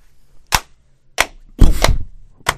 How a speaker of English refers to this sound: And I hope this clapping doesn't throw you off.